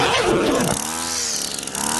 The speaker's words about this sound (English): I don't know why I played a weed whacker.